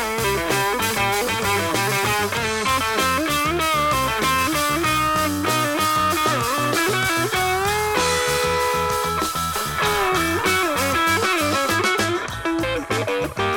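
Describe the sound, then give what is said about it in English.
A loud, steady stretch of rock music led by a thick, fuzz-distorted electric guitar, its buzzing harmonics filling the mix alongside driving drums, with no voices. “Got this fuzz distortion happening.”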